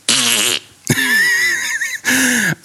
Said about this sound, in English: You know, I fart on it too.